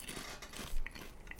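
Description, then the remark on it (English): Crackly crunching of someone biting and chewing a potato chip, a quick run of brittle snaps with one louder crunch in the middle, no talking. “I have to eat a chip.”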